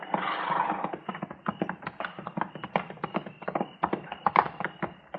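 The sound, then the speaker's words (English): Hooves clip-clop steadily on hard ground, several horses walking together with a busy, overlapping rhythm of sharp knocks, moderately loud, with no voices, as riders approach a hunter's camp when it is almost dark. “We just gonna ride right up to him, Mr.”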